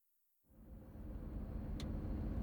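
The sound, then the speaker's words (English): After a moment of silence, a car's engine rumbles in low and steady, growing gradually louder as the car slowly pulls up to St. James Hospital in Leeds after a long drive from Scotland on March 24th, 2005, with a brief faint high tick partway through. “After a long, arduous drive from Scotland, Sandra's car slowly pulls up to St. James Hospital in Leeds.”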